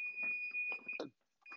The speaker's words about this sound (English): Okay. My timer's coming off. My oven is off.